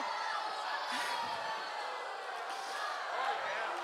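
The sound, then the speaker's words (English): A crowd cheers and whoops continuously, a dense wash of many voices that stays fairly loud and steady from start to finish, with scattered shouts rising out of the noise. “You guys can cheer too.”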